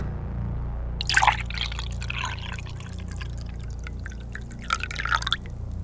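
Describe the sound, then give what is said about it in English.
Water is poured into a container in a couple of short splashy bursts, one near the start and one near the end, with a soft trickling sound between them and a low hum underneath. “I clearly have poured something.”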